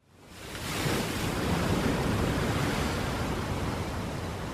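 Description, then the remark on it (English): Ocean waves break on a beach in a steady, full roar of surf that swells up over the first second and then holds, fairly loud, with no voices. “You ever go to the beach and just sit out there, look at the ocean and think how far it goes?”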